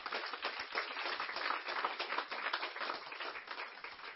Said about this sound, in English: Could you give the ministry leaders a round of applause, please?